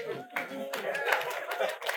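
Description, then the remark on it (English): Scattered applause from a modest church audience, mixed with some nervous laughter and murmuring voices, lasting a couple of seconds at moderate volume. “Some clapping and some nervous laughter.”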